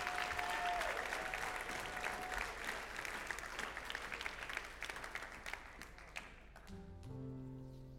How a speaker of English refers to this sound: All right, yeah, you can go ahead and give the Lord a round of applause.